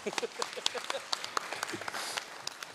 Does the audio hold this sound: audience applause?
yes